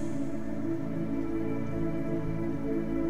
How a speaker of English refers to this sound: The rain is a constant presence in this city. A soft patter that serves to only heighten the eerie feeling of the place.